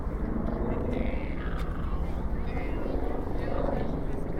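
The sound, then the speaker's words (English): A tourist helicopter drones steadily overhead above Manhattan, its low rotor rumble filling the scene continuously, with city ambience and some voices mixed in around it. “There's a tourist helicopter. Yep, helicopters hanging out above Manhattan.”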